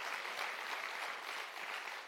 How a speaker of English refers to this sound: Come on, if you're going to give God a hand clap, give him a good hand clap this morning.